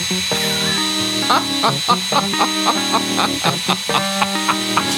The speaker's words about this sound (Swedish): Det går ju inte. Det går inte. Det gäller att ha kokosborr också när man ska borra.